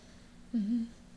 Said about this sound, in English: Sorry for clearing my throat so often, but I feel like I'm a little... a little raspy. I was making motions at my neck.